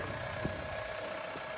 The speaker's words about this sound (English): Working this time. They're going for a tractor ride with Papa.